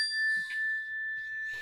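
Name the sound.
mindfulness bell ringing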